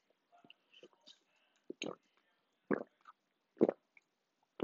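Wet mouth sounds of someone swallowing food, with a few soft clicks followed by several short gulping bursts at irregular intervals, loud, with no talking.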